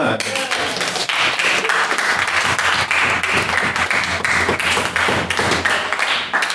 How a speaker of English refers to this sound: Go. Go give it a clap.